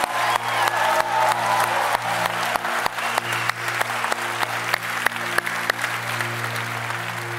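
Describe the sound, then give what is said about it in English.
An audience claps steadily for several seconds, a dense wash of applause with sharp individual claps standing out, over a low sustained hum. “You give it up for Pastor Obed. Come on, you can do better than that.”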